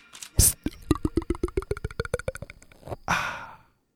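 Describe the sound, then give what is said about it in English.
A water pump on a farm chugs in a quick, steady rhythm of about eighteen pulses over a thin high whine, then cuts off with a short burst of hiss. “Water pump. Okay, let's pause for the water pump.”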